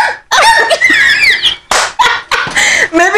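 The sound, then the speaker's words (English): Someone imitates a high-pitched dog bark, letting out a loud string of squeaky yelps and yips with brief pauses between them. “Maybe it's a high-pitched bark.”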